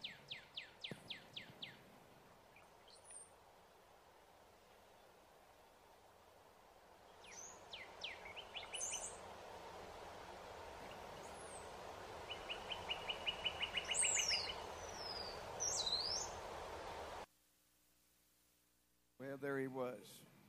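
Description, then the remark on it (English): A northern cardinal sings clear, repeated down-slurred whistles and a quick series of chirping notes over a steady background hiss, with a brief drop to near silence near the end. “And if they would play the little short video, I believe, of a cardinal, northern cardinal singing.”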